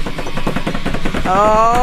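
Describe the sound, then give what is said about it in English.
A fast drum roll of quick, evenly spaced hits rattles along loudly for just over a second, then a voice starts speaking over its tail. “So, here comes another shitty drum roll.”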